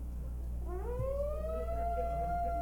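A tornado warning siren sounding in its monthly test winds up, its tone sliding upward and then holding a steady, loud wail over a constant low rumble, with no one speaking.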